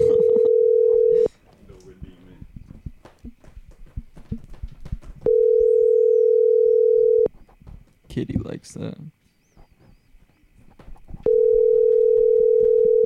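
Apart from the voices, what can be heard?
telephone ringing tone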